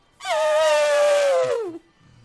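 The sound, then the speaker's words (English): A single loud, sustained trumpeting blast voiced by a person imitating an elephant, standing in for a woolly mammoth, steady and brassy with rich harmonics, holding pitch for over a second before sliding downward and cutting off. “I haven't gotten to do my elephant sound for a while.”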